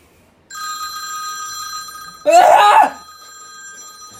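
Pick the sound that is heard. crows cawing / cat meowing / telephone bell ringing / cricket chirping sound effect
telephone bell ringing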